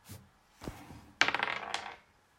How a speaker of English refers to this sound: new dice roll, please